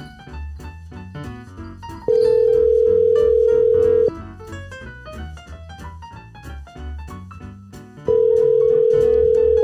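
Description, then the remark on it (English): A phone ringback tone from an outgoing call to a woman at a football game sounds twice, each a loud, steady two-second hum separated by a long pause, playing over busy background music with no talking. “She's holding her phone. Yeah, and she's thinking, why is he calling me?”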